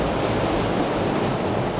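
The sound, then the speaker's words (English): A steady, dense roar of ocean waves breaking against rocks, fairly loud, with a constant rushing wash and no distinct pauses between surges. No voices. “More waves.”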